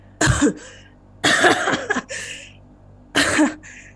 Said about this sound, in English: And then he turns to the side and coughs and spits blood onto the polished wooden floors.